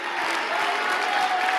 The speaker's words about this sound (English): Come on, one more time. Give Jesus the greatest hand clap that you've ever given anybody.